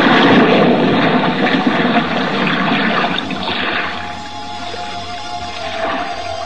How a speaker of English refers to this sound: Now, hoist you up and overboard and dive with your compact equipment well in hand into the sea and under it.